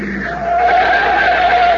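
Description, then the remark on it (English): A car drives out onto a field and skids to a stop with a loud, sustained screech of tires that holds steady for a couple of seconds, with no voices. “Hey, what's the car doing? He's coming right out on the field.”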